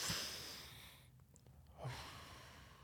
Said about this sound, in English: All right. I need to take a deep breath.